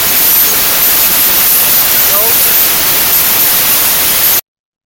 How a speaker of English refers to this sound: Still got nothing but static on your line.